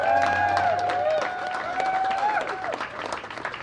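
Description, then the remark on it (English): A large audience breaks into sustained, dense applause for the delegates present, clapping loudly throughout with a few cheers or whistles rising above it, easing slightly toward the end. “So a round of applause for all the delegates who are here.”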